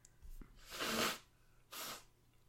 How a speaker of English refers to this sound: But, yeah. I'm gonna blow my nose quickly.